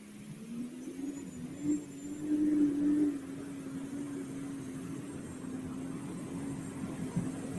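A pulling tractor's engine drones steadily as the tractor hooks, a low continuous roar that swells briefly in the middle before settling back into an even, sustained rumble.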